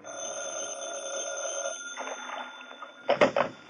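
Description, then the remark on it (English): A telephone in an office rings in short, loud bursts near the end, following a sustained tonal hum and softer rattling. No one speaks. “The first break in the case developed over the phone.”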